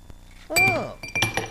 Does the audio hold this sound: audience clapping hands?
no